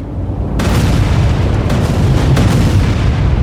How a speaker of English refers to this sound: There was the sound of an explosion from deep within the TARDIS, and the ship shook.